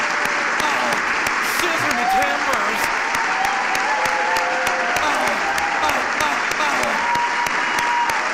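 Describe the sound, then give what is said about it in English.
Sustained applause from a large audience, with Joe Biden present, fills the whole stretch, a dense steady clatter of many hands with faint crowd voices murmuring underneath. “Joe Biden's looking around like, who are they clapping for?”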